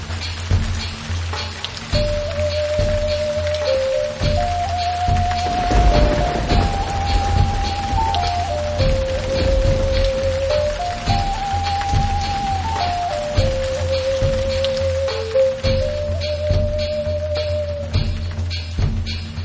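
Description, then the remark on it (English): Heavy rain pours steadily and loudly throughout, a dense hiss with deep rumbling thuds underneath, while a slow, simple melody of sustained tones plays over the downpour. “Unbelievably, the rain seemed to have gotten worse.”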